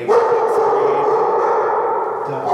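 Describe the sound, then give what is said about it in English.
A dog at an animal shelter in Toronto, Canada, barks loudly, its voice running almost continuously for a couple of seconds in a dense, drawn-out burst rather than separate, spaced barks. “And then finally, someone started barking one of the dogs.”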